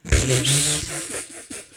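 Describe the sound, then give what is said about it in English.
A wet, airy slurp made with the mouth while trying to whistle, a failed whistle that sputters with fluttering low tones and hissy breath for under two seconds, ending in a couple of small smacking pops. “Oh my gosh, made a slurping sound.”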